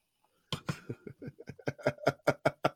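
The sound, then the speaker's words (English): Stout beer glugs from a bottle into a glass, a quick run of rhythmic gurgling bursts that grow more hollow and tonal as the pour goes on. “I'm pouring it into a glass because I feel like that's what stouts deserve.”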